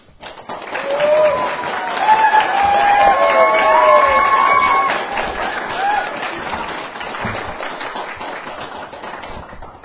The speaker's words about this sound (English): Although the applause is really quite out of place because I discovered today that I'm really very boring.